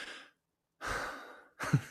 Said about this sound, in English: you just do that for like an hour. You just like inhale deeply and then just let the exhale happen. And it's just called conscious connected breathing.